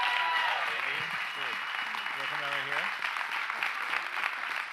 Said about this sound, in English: Please give my wife a real roar of applause. An outstanding job, honey.